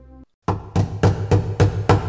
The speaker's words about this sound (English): But they hear a knocking at the door.